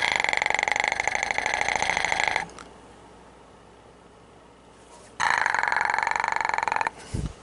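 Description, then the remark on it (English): Two long, loud, deliberate burps separated by a few seconds of quiet, each a rough, buzzing throat rumble with rich harmonics made by vibrating the back of the throat, the second ending in a short low grunt. “I'm just vibrating the back of my throat.”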